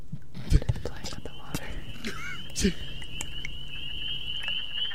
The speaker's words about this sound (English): Okay, well, I don't think we're going to do more ASMR videos in the future. We're going to need to find a different source of pouring sound effects.